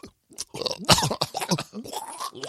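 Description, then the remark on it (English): A person's voice imitates a cat throwing up: a run of wet, throaty hacking and gagging bursts, rough and crackly, rising and falling in quick succession for a couple of seconds. “Just think of like the most disgusting thing, like a cat throwing up. Oh, that noise. I can do that noise.”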